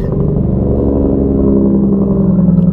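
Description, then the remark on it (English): A deep, steady truck engine rumbles alongside a car, loud and continuous, with a low droning hum that rises slightly in pitch near the end as if idling or creeping forward. “There ain't no entanglement with you and your truck and me in this car.”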